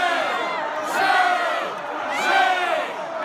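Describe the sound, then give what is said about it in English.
A large political convention crowd of delegates yells in unison, chanting shame in two loud, rising swells over a constant roar of many voices. “So I was standing by the Virginia delegation, and there was a woman in a green dress on top of a chair, hands in the air, yelling, shame, shame.”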